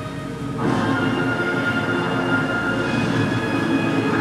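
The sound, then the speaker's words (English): A tornado, coming through a mountain pass to the north, roars in after a brief quieter moment and holds steady and loud, a dense rumbling rush with faint whining tones running through it, like a freight train, with no voices. “Tornado. You may not be able to see it yet, but it'll be coming through the mountain pass to the north.”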